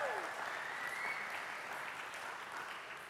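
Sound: audience applause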